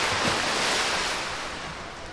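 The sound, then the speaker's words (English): Steady, rushing splash of water at a water park fills the whole stretch, a dense wash of churning spray that stays fairly loud, easing off slightly toward the end, with no voices. “Sharon Willis had always loved snooty dystopian Manchester with its wonderful, watery water park.”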